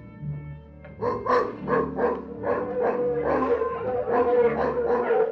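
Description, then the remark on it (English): A pack of mongrel dogs in a village barks and howls in overlapping bursts. The yelping starts after a brief pause and continues steadily and fairly loud, with no one speaking. “It's the mongrel dogs. Curse their nasty little throats.”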